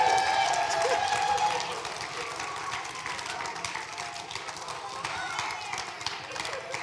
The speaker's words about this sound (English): I love our church. Hallelujah. Come on. Let's give Jesus a big clap hand. Hand clap.